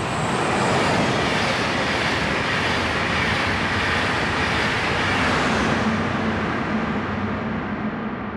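A train rumbles past with a loud, steady roar of wheels on track. The broad noise holds for several seconds, then its hiss slowly fades as it moves away. No voices.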